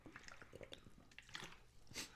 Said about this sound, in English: God, that was a loud drink of water. My bad.